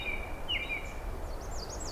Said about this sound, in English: It's a bright and cheery robin.